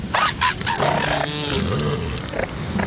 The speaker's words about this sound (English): An elephant seal breeding colony is a cacophony of crying pups, calling mothers, and grumbling territorial males.